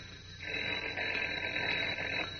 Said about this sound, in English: But as we continue now, Kent's phone is ringing again. Listen.